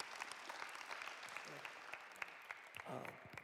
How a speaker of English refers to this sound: Could you give him a round of applause? Thanks, man.